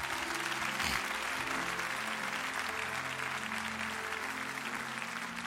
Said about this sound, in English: Come on, let's give them another hand clap.